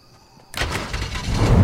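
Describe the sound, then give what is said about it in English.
A truck engine in a video game suddenly roars to life after a quiet moment, then runs as a loud, rough, sustained rumble that swells heavier toward the end, with no voices. “I got the truck.”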